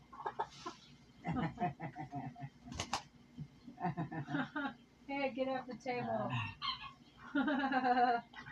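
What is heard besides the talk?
chicken clucking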